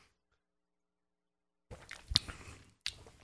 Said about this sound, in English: let's try this Jones Soda turkey and gravy flavored crap